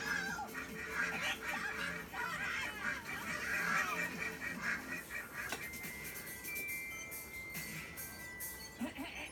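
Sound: ducks honking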